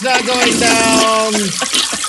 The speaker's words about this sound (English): Story is flushed, everybody. Hope it doesn't clog up the pipes. Oh, wait. It's a double flasher. It's not going down.